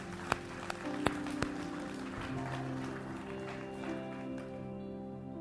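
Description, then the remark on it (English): A church audience applauds during a morning service after a prayer, a dense, steady wash of hand clapping with a few sharp, louder claps standing out early on, over sustained low musical tones. “Can we give everybody a hand clap this morning?”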